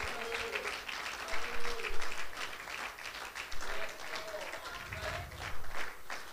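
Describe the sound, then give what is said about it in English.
A crowd claps steadily in answer to a call to clap their hands if they love the Lord, a dense wash of overlapping handclaps, with a few faint voices and cheers rising underneath. “Clap your hands if you love him this morning.”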